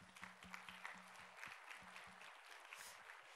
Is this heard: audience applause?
yes